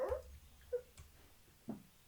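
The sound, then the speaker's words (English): A dog named Louis gives three short, fairly faint barks at uneven intervals, each a brief mid-pitched yelp with no voices around them. “Was that your dog?”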